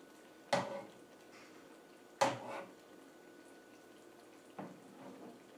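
Pasta water is poured into a mug in three short splashing bursts, spaced a couple of seconds apart, each fading quickly, saving 1 cup. A faint hum between and no talking.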